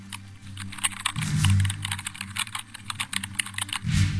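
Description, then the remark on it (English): Rapid, uneven computer keyboard typing at a desk in Scotland Yard, with crisp clicks, set over a low steady hum; no one speaks. “Lisa stops typing for a moment and looks at the brainstorm diagram on the wall.”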